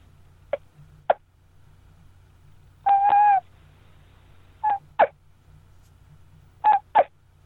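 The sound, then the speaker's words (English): Soft hen turkey sounds from a call: a few short pops, then a drawn-out, fairly high whine with paired short notes after it, all over a steady low hum and no talking. “Just a little sound like that, or just a little whine, you know.”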